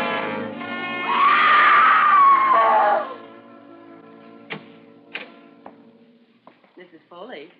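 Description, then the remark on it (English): A woman lets out a long, loud, high-pitched scream lasting a couple of seconds, followed by a few sharp clicks and knocks and faint background voices. “You mustn't scream like that.”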